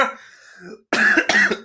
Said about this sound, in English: That was perfect timing because I was coughing my dick off too.